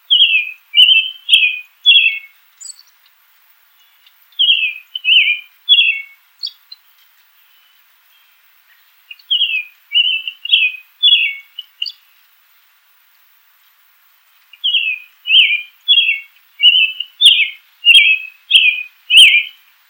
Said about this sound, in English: Male robins have a complex and almost continuous song. It's made up of discrete, often repeated units and combined into a string with brief pauses in between.